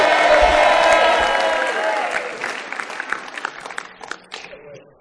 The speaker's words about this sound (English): Can you just give Jesus a big shout, a big clap for that?